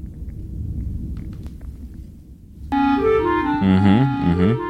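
A short, loud musical jingle, a yawning theme played whenever a co-host yawns, kicks in after a few seconds of low rumbling noise, its bright tones stepping and then sliding downward in pitch.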